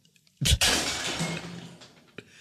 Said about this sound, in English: A plate exploded.